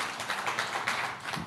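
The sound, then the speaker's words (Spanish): An audience applauds the Lord in the morning, many overlapping hand claps blending into a steady, crackling wash of sound with no voices on top, holding at an even, moderate level throughout. “¿Será que podemos darle un aplauso al Señor en esta mañana?”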